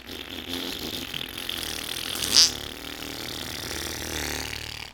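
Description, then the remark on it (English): A voice imitates a long, loud fart let out by a man across the street, a rough, buzzing raspberry held steadily for about five seconds with a brief sharper spike partway through before it cuts off. “We go outside to move the cars, and then out of nowhere, this dude across the street just lets one go. Just rips some fucking ass. And it was ass. Loud, like...”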